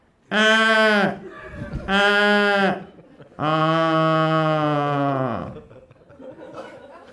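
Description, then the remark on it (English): A voice imitates an Australian crow: three loud, drawn-out nasal wails, the first two short and the third much longer, each sagging downward in pitch at the end. “Do you know what a crow sounds like in Australia?”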